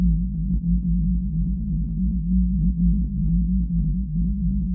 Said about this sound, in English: If a listener has ordinary speakers, great, they'd hear the altered sound of the whale. And if they had good speakers, they'd hear both the altered and the unaltered sound, like this.